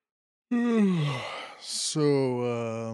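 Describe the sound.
A person stretches their arms and lets out a long, drawn-out yawn, the voiced tone sliding downward, then a brief breathy inhale before a second, steadier yawning groan trails off.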